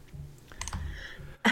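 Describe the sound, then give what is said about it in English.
Rapid clicking and tapping on a computer keyboard and mouse, fairly quiet, with a sharper, louder click burst at the very end. No one speaks. “what are you furiously clicking?”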